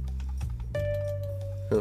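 A quick run of small, light plastic ticks from a computer mouse scroll wheel being rolled, fairly quiet, followed by a steady electronic tone humming underneath.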